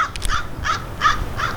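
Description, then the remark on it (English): A crow caws four times in a steady, evenly spaced series, each call harsh and raspy, as it flies right overhead in a backyard, over a faint outdoor background hum. “That's the crow.”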